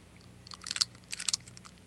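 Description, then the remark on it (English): Crisp crunching of a chocolate-coated peanut butter candy being chewed, two clustered bursts of crackly bites over a quiet background with no talking. “All right, yes, I've got one here. I'm going to eat it. Gonna eat one live.”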